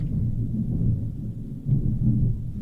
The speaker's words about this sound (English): You guys hearing this thunder? Yeah, that was thunder. We only record when it storms now, apparently.